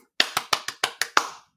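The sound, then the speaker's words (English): Seven sharp hand claps in a quick, slightly uneven rhythm, each a bright crack with a short ringing tail, with no voices. “That's not me clapping.”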